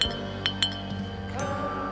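A glass bottle of imported kombucha clinks down with a few sharp, bright taps, then settles into a low rattling hum with no voices present.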